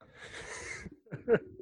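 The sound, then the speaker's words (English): A rough, wheezy cough in the background: a long raspy breathy rasp, a brief pause, then two short, harsher bursts, fairly quiet overall. “In the background. Yay! Like, oh, yeah, terrible cough.”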